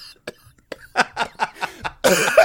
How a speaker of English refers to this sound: I'm leaving all the coughs in. I don't care. This is the listener's penance now.